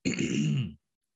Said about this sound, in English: So, God bless this cough. I wish it would go away.